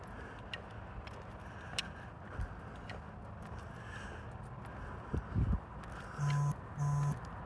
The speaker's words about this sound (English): My phone is vibrating again.